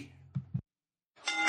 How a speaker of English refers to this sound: You hear that bell? That means you're officially out of episodes of Pizza and Wrestling Podcast.